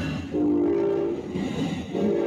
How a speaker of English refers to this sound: Sorry. We're right by a train track and there's a train going by.